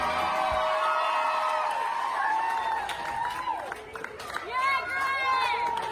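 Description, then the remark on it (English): Hospital staff cheering steadily as a patient who beat coronavirus is discharged after 64 days and walks out, high excited voices whooping and calling over scattered clapping, with a fresh burst of rising shouts near the end. “he just got discharged the other day, and the entire staff cheered for him as he walked out.”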